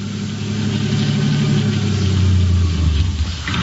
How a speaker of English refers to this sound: All right, now turn off the engine.